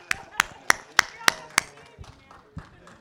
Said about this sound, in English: Let's go. Let's clap for people. Oh, nobody's excited. All right, I'll clap for you.